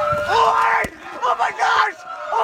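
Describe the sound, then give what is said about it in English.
Several voices scream and shout at once at a vigil in Sacramento as a police SUV hits a protester crossing the street, in loud, sustained, high-pitched bursts that rise and fall, with a sharp bang near the start cutting briefly through the crowd's cries. “It's hard to tell when you hear that screaming.”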